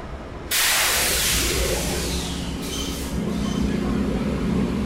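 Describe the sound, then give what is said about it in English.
A passenger train, thought to be the Coast Starlight, powered by GE Genesis locomotives, pulls in at 9:09 p.m. with a sudden loud burst of air hiss that starts abruptly and stays steady, while a low engine rumble and a humming drone rise underneath. “I'm assuming that the train that's just come in is the Coast Starlight.”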